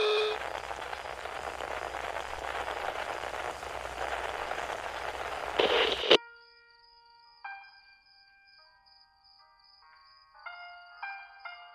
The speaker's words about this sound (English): Why classical music? I walked over to the radio.